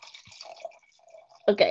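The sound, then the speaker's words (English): Liquid trickles and gurgles as wine is poured into a glass, fairly quiet, ending with a brief louder splash near the end. “I had all that time to pour more wine.”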